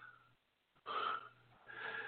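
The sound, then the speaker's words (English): Faint, raspy snore-like breathing: two drawn-out wheezy breaths separated by a short pause, over a steady low hum, with no one talking. “Is somebody snoring?”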